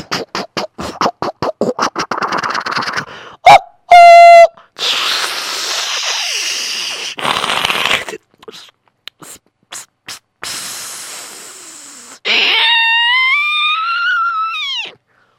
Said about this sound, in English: Oh, here comes the train. Watch what happens.